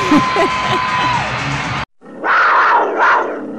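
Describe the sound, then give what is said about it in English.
A loud arena crowd at a Wolves basketball game's Family Day event cheers and roars, a dense wall of voices with a whistle tone in the first part, a brief cut, then two swelling waves of cheering. “And who cares what week of school it is? We're at the Wolves game!”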